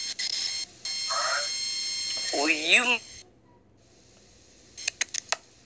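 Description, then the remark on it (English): A garbled, tinny voice over a phone line keeps cutting in and out, with abrupt dropouts, warbling fragments and a few sharp digital clicks near the end. “Your phone is breaking up bad. Your phone breaking up really bad.”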